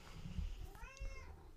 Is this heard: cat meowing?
yes